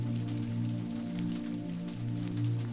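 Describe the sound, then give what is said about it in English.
Steady rain patters onto puddles with soft, scattered droplet splashes, continuous, layered over a low sustained droning hum; no one speaks. “Silvery raindrops splatter onto the puddles, creating ripples that swirl the rainbow reflections like tie-dye.”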